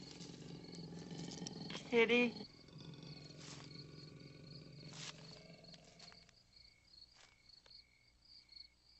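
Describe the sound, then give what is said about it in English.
A cat lets out a loud, brief growling yowl near the start, then fades, while crickets chirp steadily in the background of a quiet outdoor night. “Kitty.”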